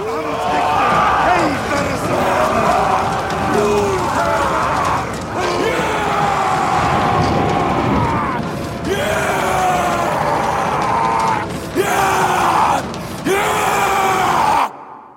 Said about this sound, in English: he howls like a beast, as you'll hear in this scene in which the Vikings, on a night before a raid, are doing a warrior dance, chanting around a bonfire at night. The chant turns into roars, and at the end, you hear Skarsgård howl.